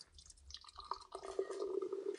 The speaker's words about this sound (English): Let's see if I can pour this.